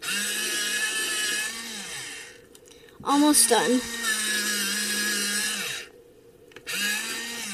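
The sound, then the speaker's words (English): An electric pencil sharpener sharpening pencils whirs with a steady, buzzing motor hum and grinding, running in long stretches with brief pauses, while a voice briefly speaks over it midway. “All right, hold on. Let me sharpen these again.”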